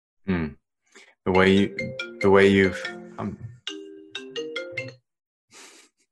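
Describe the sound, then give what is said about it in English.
A computer's incoming-call ringtone plays a bright, melodic jingle of chiming tones, with a few short notes rising and falling before a brief pause and a faint final blip. “My phone's off, but my computer got a call.”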